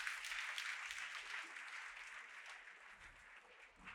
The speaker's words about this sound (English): Now put your hands together and give the Lord a hand clap of praise on today.